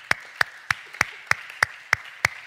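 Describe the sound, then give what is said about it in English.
An audience claps in unison, about eight sharp, evenly spaced hand claps in a steady rhythm, moderately loud, with no voices. “Somebody give him a hand clap.”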